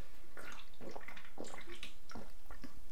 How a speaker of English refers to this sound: Now let me just take a sip of my energy drink. Sugar-free energy drink, of course.